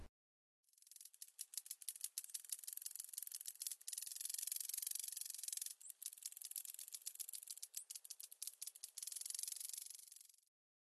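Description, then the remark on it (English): A Great Basin crackler grasshopper (Circotettix undulatus) makes a dry, high-pitched crackling in the distance, among bunch grasses and sagebrush on dry, shaly hills above Spokane Bay. Rapid snapping clicks run together into a rasping buzz for about ten seconds, with a few brief breaks and no voices. “It's a sharp, crackling snap, repeated several times, then followed by a rapid buzz.”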